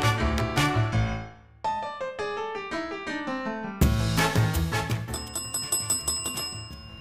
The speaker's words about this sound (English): Hey, we got so much to ring this bell for today. We're just going to ring the bell the whole show.